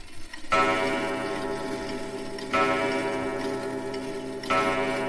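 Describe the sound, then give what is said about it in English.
A clock striking midnight strikes three times at steady two-second intervals, each resonant chime ringing on and overlapping the next, moderately loud, with no voices. “And then the clock struck midnight.”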